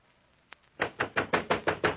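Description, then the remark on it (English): Heavy, insistent knocking on a wooden door: a single tap, then a rapid run of about eight loud, evenly spaced blows, with no voices. “Open the door, do you hear?”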